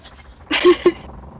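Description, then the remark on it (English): A female cat with a cold makes a short, raspy, breathy cry, followed right after by a quick sharp burst, standing out moderately loud against a faint background hum. “She still has a cold, so she's being really annoying.”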